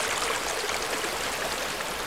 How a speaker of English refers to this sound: This water is maintained in the landscape because as soon as rain falls on the canopy, on this vegetation, that rain then infiltrated gradually into the ground, ending up with this steady flow of this river.